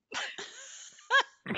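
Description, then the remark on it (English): A person voicing the character Sylpha in a role-playing game gives a series of raspy, wheezy coughs, several short breathy bursts with a drawn-out hoarse exhale between them, as if deliberately performed. “Sylpha coughs and then looks at Jalen.”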